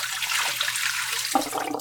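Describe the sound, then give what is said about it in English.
Film developer liquid pours steadily from a small film developing tank for under two seconds, a continuous rushing splash that shifts in tone near the end as the stream thins out. “All right, and let's pour it in our developer.”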